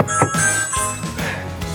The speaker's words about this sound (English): Ring the doorbell.